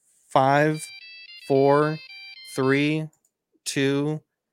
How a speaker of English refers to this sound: Okay, timer went off on StreamYard.